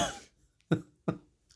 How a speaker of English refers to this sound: You're making us cough.